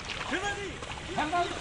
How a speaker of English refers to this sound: is ploughing his paddies with his water buffalo.